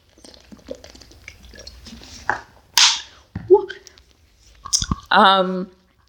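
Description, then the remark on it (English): Wet mouth sounds of someone drinking water: a few sips and gulping swallows with short pauses between them, ending in a brief voiced exhale. “Hold on, let me drink some water because my throat is so dry.”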